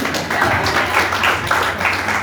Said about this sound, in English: So many people, that's a good word, give it a clap.